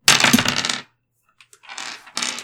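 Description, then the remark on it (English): Dice clatter across a hard surface in a loud rattling burst, then a few small ticks and two shorter rattles as they tumble and settle, rolled for damage in a game. No one speaks. “Roll me damage.”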